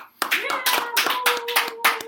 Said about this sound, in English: Sparse applause. Sparse.